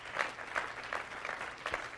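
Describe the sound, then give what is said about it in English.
An audience claps their hands in a steady burst of applause, many overlapping claps forming a dense, even patter that holds for the full couple of seconds with no voices over it. “If you believe that, clap your hands one more time.”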